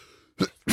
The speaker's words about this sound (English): Excuse me. Bless you.